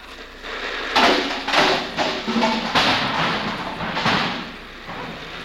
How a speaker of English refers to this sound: It's raining a regular California rain. Out here, it rains the hard way. The hard way. Up. Just listen to that rain.